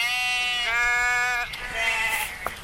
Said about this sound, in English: My goodness, I've never heard the sheep so buoyant. What's going on? Oh, goodness.